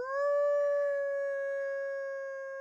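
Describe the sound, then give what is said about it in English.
A woman's voice imitates a wolf with one long howl that swoops up at the start and then holds a steady, clear pitch, alone against silence. She howls with her hands cupped around her mouth on a cold night in Wisconsin. “She raises her face, cups her hands around her mouth, and howls.”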